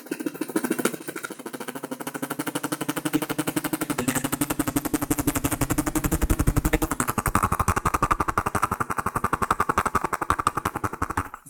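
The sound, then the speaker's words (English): A voice imitates a helicopter coming in off the horizon with a rapid, continuous chopping rattle of fast, even pulses. The sound stays loud and steady for about eleven seconds and swells slightly midway, with no talking. “If you've got the skills to do sound effects like I have, if you can't think of what you're going to talk about next, you can just do some helicopter coming in off the horizon.”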